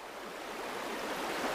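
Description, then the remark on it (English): Steady, broad rushing of the Yazoo River flowing past in the Mississippi Delta, a soft continuous wash with a faint bubbling texture, even throughout, with no voices. “The muddy waters were gently floating by as I inhaled my food.”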